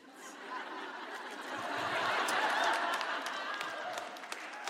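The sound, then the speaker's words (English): An audience claps steadily for several seconds, a dense wash of hand claps mixed with scattered laughter, swelling slightly in the middle and holding fairly loud throughout. “Don't clap.”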